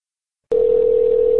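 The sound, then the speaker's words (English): A steady, continuous telephone line tone at the start of a phone call begins abruptly after half a second of silence and holds at an even, fairly loud level, clear with no voices. “receives a phone call from a turtle.”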